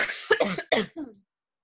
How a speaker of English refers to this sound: Hang on, I have to get, like, a big cough, and I don't want to do it on here.